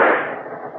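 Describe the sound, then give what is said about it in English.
A single sharp shot from a little .32 automatic pistol, fired on a moving train, bursts out loud, then its harsh, noisy crack trails off into a fading wash of sound over the rest of the moment, with no voices. “Open your purse and take out the little .32 automatic you hoped you wouldn't need.”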